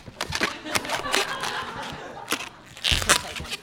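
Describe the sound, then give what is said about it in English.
Irregular rubbery squeaks and crinkly rubbing as a long, fairly old rubber balloon is twisted and bent into a balloon animal, with a louder squeal near the end and no talking. “It's funny, like, I don't buy these balloons very often. I can feel that this one's kind of old, so it actually might pop.”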